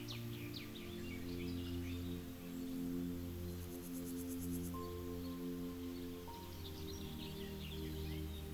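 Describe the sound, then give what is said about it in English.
Soft bird chirps twitter in short bursts at the start and end, fairly faint, layered over a steady, low humming drone that runs throughout. “You notice sound of nature all around you. The birds are chirping away.”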